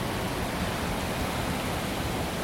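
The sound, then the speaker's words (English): Steady rain falls on a Friday night in a constant, even hiss with no distinct drops standing out. It is a dense wash of noise that holds at the same level throughout, with no voices present. “Sounds a little more rainy now.”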